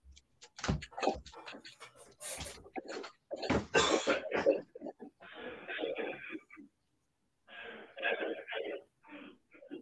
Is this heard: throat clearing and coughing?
yes